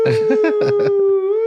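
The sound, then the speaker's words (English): A voice imitates a siren with one long, steady 'woo' tone that wavers slightly in pitch near the end, while choppy vocal bursts overlap its first half. “And then He comes out of the bathroom with like a siren going, woo.”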